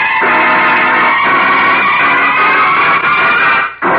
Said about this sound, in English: Come on, Lou. Get this car rolling. We've got things to do.